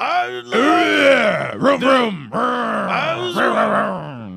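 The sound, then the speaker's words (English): A gravelly, growling male singing voice delivers loud phrases in a rough, groaning style, broken by a couple of short pauses between lines. “It's like pirate music.”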